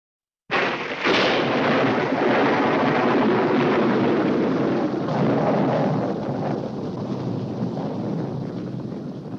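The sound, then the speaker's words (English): A sudden, loud crack of lightning bursts in and rolls straight into a heavy, roaring thunder rumble that stays strong for several seconds, easing only slightly toward the end. No voices are heard. “I think we've been struck by lightning.”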